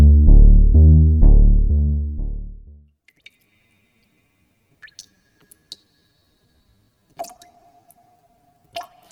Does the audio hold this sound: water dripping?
yes